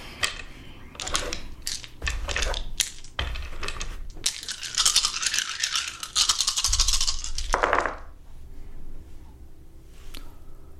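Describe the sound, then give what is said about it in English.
A large handful of dice is rolled for a game check, rattling and clattering across a hard surface in a dense burst lasting several seconds, fairly loud, with no talking over it. “That was a big dice pull, too.”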